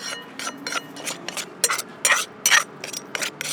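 Papaya salad ingredients (grated papaya, fish sauce, tamarind, lime, noodles and cabbage) are mashed and stirred together in a bowl, a steady run of scraping, squishing strokes roughly three per second, with a few louder rasps toward the end and no talking.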